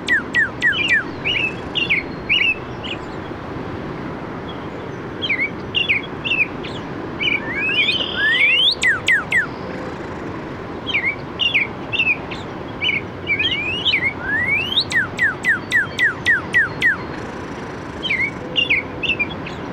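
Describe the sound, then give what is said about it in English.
Robin, cardinal and red-winged blackbird songs overlap at Hammonasset Beach State Park in Madison, Connecticut, recorded by Mark Seth Lender: repeated warbled phrases mixed with bursts of rapid, clear sweeping whistles, all over a steady background hiss with no talking. “There's a robin and a cardinal, and then a red-winged blackbird.”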